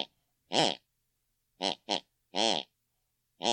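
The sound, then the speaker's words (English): An elderly woman snores in her sleep in the room next door with a series of short, snorting, pig-like grunts, five loud bursts in irregular succession with silence between them and no talking. “The last thing my mother listened to before she went to bed, she snores in her unconscious.”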